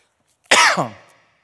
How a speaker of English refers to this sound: I'm going to turn and cough.